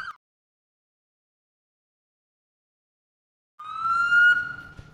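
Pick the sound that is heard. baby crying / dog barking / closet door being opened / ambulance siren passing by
ambulance siren passing by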